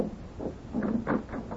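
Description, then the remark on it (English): Several knocks on an office door, four or five dull raps in an uneven rhythm, moderately loud with no one speaking. “Oh, you see who's at the door, Rusty?”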